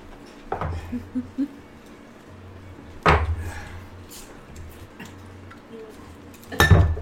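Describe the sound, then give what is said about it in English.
Glassware clinks and clatters while drinks are refilled: a few sharp knocks and small ringing taps spaced over several seconds, with a steady low hum underneath and no talking. “Before we start the game, I'm going to refill my drink.”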